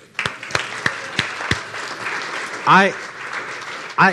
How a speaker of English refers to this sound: And you know what we should do? Because you haven't done this, I don't think, really at all. Let's clap for people that are stuck at home.